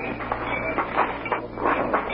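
Freight train cars rumble along the tracks in a railroad freight yard on the outskirts of a city, a steady low roar broken by rhythmic clacks and metallic clatter repeating every fraction of a second, with no voices.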